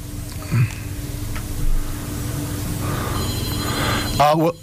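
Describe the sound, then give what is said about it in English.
A telephone rings with a bright, steady electronic trill in the last second or so, heard over a low background murmur and ending with a short burst of noise. “I hear hold a phone. On a second.”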